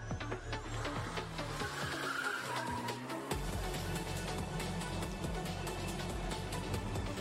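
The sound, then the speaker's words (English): Small racing cars roar steadily while tires screech and skid through drifting turns, a dense, loud wash of engine noise with squeals rising briefly midway and no talking. “The little, I love little cars. Yeah, racing. Same. I feel that way about tiny cars. Like. When they drift, hot rods.”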